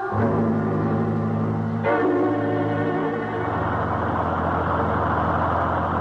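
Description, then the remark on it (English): A bus engine runs steadily and loudly, a deep droning rumble with a brief shift in pitch partway through, continuing without pause and with no voices, as the bus keeps going without a driver. “Been on this godforsaken bus for almost 20 minutes. It keeps on going without even a driver.”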